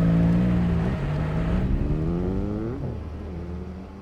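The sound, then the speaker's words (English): A motorbike accelerates hard, leaving a scene at speed, its engine whine climbing and dropping through quick gear changes, loud at first, then easing slightly as it pulls away. No one speaks. “Mian accelerated hard, leaving the scene at speed.”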